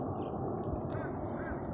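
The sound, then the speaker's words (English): Crows cawing a few times at a billabong, harsh calls rising over a steady outdoor rumble of wind and ambient noise. “There are some crows giving you a welcome song.”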